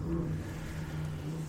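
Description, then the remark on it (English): A steady, low engine drone with a harmonic hum holds for a second and a half, loud and even throughout, like a motorcycle revving as it rolls past. “Is that a motorcycle?”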